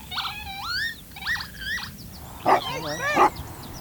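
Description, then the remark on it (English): A dog, one of two being walked by a man on the Ashdown Forest, yips and barks in short, high-pitched squeaky bursts, several in quick succession, with no one talking over them. “You've got two dogs.”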